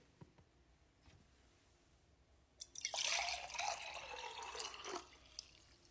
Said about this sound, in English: Well, here's pour number two.